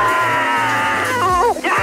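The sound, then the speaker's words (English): A race driver's loud, sustained victory scream after winning the 500 comes through a harsh, compressed pit radio channel, his voice straining and cracking in pitch before briefly cutting out and surging again. “Now we hear what the hell's been bottled up with this epic scream that you had over the pit radio.”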